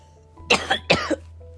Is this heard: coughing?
yes